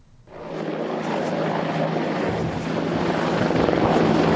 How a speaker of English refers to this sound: Here in the controlled airspace of Taoyuan International Airport, two Apaches and four Black Hawk helicopters suddenly emerge. The Apaches open fire to cover the Black Hawk's descent.